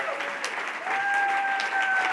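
An audience breaks into steady, loud applause for Dr. Gold that swells after the first second, dense clapping filling the whole clip, with a few high sustained whistles ringing out over it.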